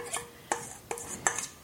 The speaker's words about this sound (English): And then, if you need to, you might need to spread it around with a spoon, which I'm finding I need to do. If too much falls into the middle or onto the plate on the outside, just scoop it back up, put it back on the cake.